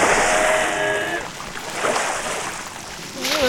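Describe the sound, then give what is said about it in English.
A lizard creature is heaved into water: a big watery splash and rushing wash, with its thin, high-pitched cries rising over it early on and a warbling, wavering shriek returning at the end. “I think the water's hurting it. Nah, that's a shriek of delight, you know?”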